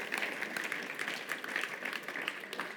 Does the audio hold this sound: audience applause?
yes